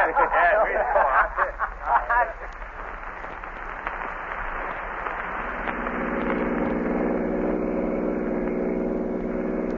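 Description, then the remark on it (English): A car engine hums steadily as the vehicle drives along, a low continuous rumble that grows slightly fuller toward the end, with a brief stretch of voices talking over it at the start. “pull right over here, off the road.”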